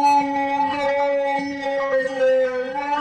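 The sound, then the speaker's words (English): A slowed-down sound treated with reverb and flange, one layer in building a Chewbacca-style sound effect: a loud, steady, howl-like drone with a rich buzzy pitch holding for about three seconds, with faint clicks scattered through it. “Then you've got to add a little bit of reverb and my old favorite flange.”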